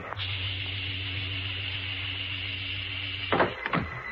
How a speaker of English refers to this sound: Filling airlock. Now opening cabin hatch.